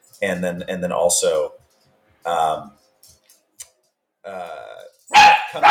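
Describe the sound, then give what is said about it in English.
A dog barks and snarls viciously at a corner in several loud, rough bursts, a long aggressive run followed by shorter outbursts separated by brief pauses. “He barked viciously at a corner.”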